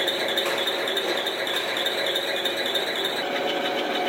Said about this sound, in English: That's the sweet sound of grinding. In this case, the grinding of wheels on our legacy cars to implement a new profile that reduces wear and, even more importantly, knocks some decibels off the BART screech.